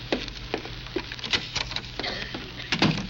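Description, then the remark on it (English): A series of sharp, slapping smacks lands at irregular intervals, some louder than others, over a steady low hum with no voices. “Who was the smart aleck that slapped me?”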